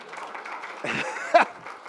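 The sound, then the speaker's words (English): An audience applauds, a dense, steady patter of many hands clapping at moderate volume for a couple of seconds, with a brief louder burst near the end. “There we go, give him a round of applause.”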